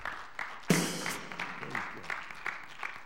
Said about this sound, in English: Round of applause for them as well.